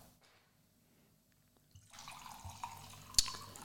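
After a quiet moment, wine splashes and gurgles steadily into a wine glass, with a brief bright clink near the end; no one speaks.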